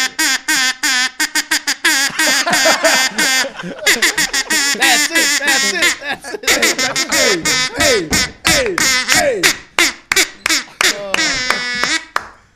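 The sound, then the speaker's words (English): A duck call is blown from the wrong end in a long run of loud, raspy quacks, fast stuttering bursts that slow into drawn-out, wavering honks, continuous for about twelve seconds. “Hell of a call. Hey, watch out for the ducks flying.”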